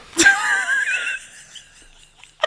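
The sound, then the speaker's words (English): A voice imitates a fart with a wet, buzzy raspberry that starts sharply, wavers in pitch for about a second and trails off. A short, sharp burst follows. “could you take us away with some fart sounds?”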